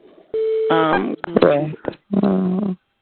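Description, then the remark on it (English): A single steady electronic beep sounds over a phone line as someone puts their phone on hold, followed by bursts of muffled, voice-like sounds. “They don't know, but their phone holds with a beep.”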